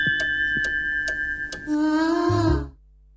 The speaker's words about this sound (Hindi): Studio की घड़ी की सुइयां कहती हैं कि जी 9:12:55 हुआ चाहते हैं.